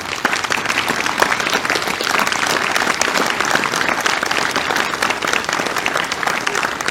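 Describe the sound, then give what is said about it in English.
An audience applauds those who served in the armed services as they stand, steadily for about seven seconds, a dense, even wash of many hands clapping at once, holding the same loudness throughout without swelling or fading. “So I didn't necessarily have a plan to do this, but if you have served as in any of our armed services, if you'd want to stand up for a second, I think a round of applause would be appropriate for that.”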